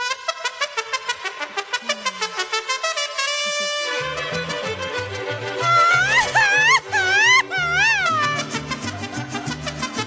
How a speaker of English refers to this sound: What do you have? That meow? Sure.